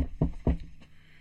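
Knocking on wood: two firm, dull knocks in quick succession, followed by a third, softer tap, with no talking.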